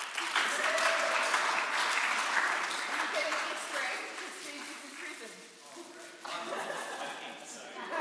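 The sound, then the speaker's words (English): An audience applauds for several seconds after filling in two words recapping last week's sermon, a dense wash of many hands clapping, steady and fairly loud, swelling again briefly near the end, with faint voices and a little laughter mixed in. “Well done, everybody. Give good clap.”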